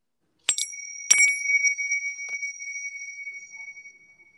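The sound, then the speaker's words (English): A bright, high chime is struck with two quick taps, then its clear metallic ring hangs and slowly fades away over several seconds, alone with no voices. “If no thoughts come to you, if we just like, just go with the flow of just the peacefulness of the chime, okay?”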